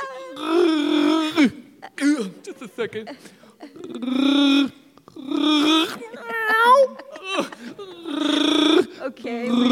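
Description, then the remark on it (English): A person playing a lion strains out several drawn-out, groaning roar attempts, each a loud wavering burst separated by short pauses and brief spoken words. “What's supposed to happen when you roar?”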